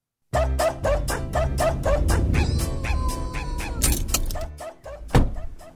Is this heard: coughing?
no